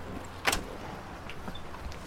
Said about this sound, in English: I put the key in the door and opened it.